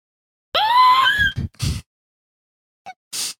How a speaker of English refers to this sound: Okay, right, you need to scream quick.